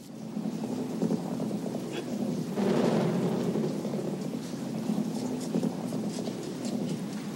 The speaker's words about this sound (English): Boy, I love the rain. Have ever since I was a little boy. Dad used to say rain is the sound of angels flushing.